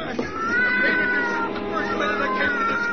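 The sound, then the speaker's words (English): A cat named Lady Susie yowls and screeches in distress, writhing and scratching as a man tries to push her into a cellar furnace; a loud, drawn-out wailing cry that rises and wavers continuously for several seconds without pause. “George, drop that cat this instant.”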